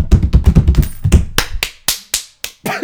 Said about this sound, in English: You're punching your own hand or something.